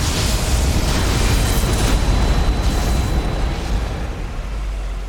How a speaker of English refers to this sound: Is it, was it that plasma fire again? No, it was just lightning. This is normal pretty... lightning.